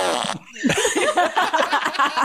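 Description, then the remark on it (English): A remote control fart machine running on 9-volt alkaline batteries blasts a loud, drawn-out electronic fart, a wet sputtering rasp that carries on for about two seconds after a short buzzing start, with no talking. “That's a fucking remote control fart machine.”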